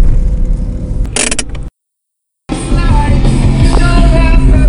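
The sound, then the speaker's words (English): Steady low rumble inside an older Polo car on the move with the family aboard and music playing, cut by a brief moment of silence before the droning road noise resumes with faint tonal sounds mixed in. “Got the family in the car now.”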